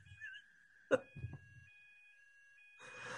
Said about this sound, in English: I honestly, I don't know how long it's going to go on for. This is the second time, I want to say, this series that your alarm has gone off.